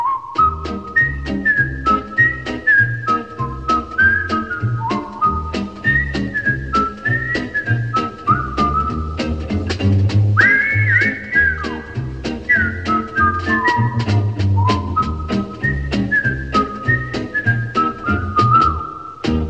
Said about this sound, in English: You get that whistle tune and you get Andy and Opie just going down to the fishing hole